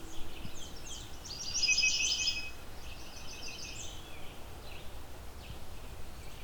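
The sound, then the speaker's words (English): A redstart, a warbler, sings high, thin phrases outdoors: one clear, louder burst of rapid notes early on, followed by softer repeated song fragments over a steady background hiss. “They're a fairly widespread warbler for this region.”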